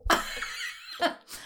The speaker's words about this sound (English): I'm not coughing because I have. Nope. She's gagging. Anything. I'm gagging and my wine went down the wrong way.